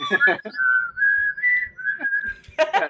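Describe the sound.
A person whistles the X-Files theme song, a slow, sustained melody of long gliding notes, clear, with brief bursts of voice just before and after the tune.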